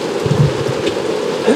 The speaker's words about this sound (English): Okay, this is a very live podcast. You guys hear the rain? Very live. You guys hear the rain coming down?